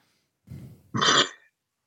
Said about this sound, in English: Are you chirping or burping? I'm burping it.